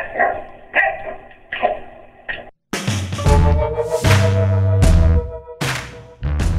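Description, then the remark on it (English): A prize-winning dog in New York barks in a steady run of short, evenly spaced barks, then breaks into louder, longer and more drawn-out barking, with no one talking. “Dog wins a prize, and he thinks he can just bark over everybody.”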